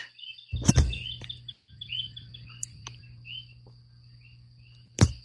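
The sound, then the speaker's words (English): At sunrise, scattered bird chirps and tweets join a steady, high trilling chorus of frogs, with a low background hum and a couple of sharp knocks. No one speaks. “The birds here are beginning to join in with the frogs.”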